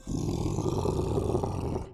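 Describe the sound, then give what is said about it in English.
A person imitates the roar of the Pokemon Charizard, a single sustained, gravelly growl lasting about two seconds, loud and low-pitched with a rough, rumbling texture and no other talk. “So whenever you hear the sound of a Pokemon in this show, the role of that Pokemon will be played by me.”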